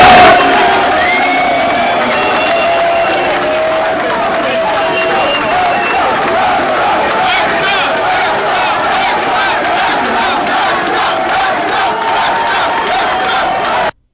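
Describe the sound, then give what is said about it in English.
A large crowd cheers and shouts as a nominee is announced for a nomination, a sustained, dense roar of many voices, holding a steady loud level for about fourteen seconds before cutting off abruptly. “I thought I was gonna get booed, but this is the reaction when they were announcing me.”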